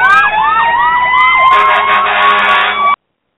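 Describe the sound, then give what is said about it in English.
Several emergency vehicle sirens wail together, loud, their rising and falling tones overlapping in a steady blaring chorus for about three seconds before cutting off abruptly. “You hear those sirens?”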